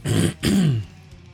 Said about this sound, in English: I started off and I was pretty good, and then I just ended up on mute coughing for like minutes straight.